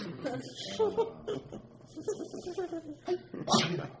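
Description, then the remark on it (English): Murmured voice sounds and soft chuckle-like noises, then a single sharp, breathy sneeze bursts out loudly near the end. “Gesundheit.”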